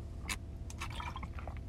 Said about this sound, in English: And sorry if you guys are hearing, sorry if you guys are hearing water bottles, but that's because I'm drinking water while I'm doing this podcast.